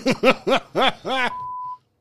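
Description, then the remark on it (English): A voice sounds out in four or five short, rhythmic bursts, then a steady, high-pitched censor beep bleeping out swearing holds alone for about half a second before cutting off into silence. “Nah, you ain't got to beep that shit.”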